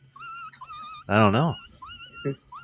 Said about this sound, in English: No, Seabiscuit. The puppy. Seabiscuit.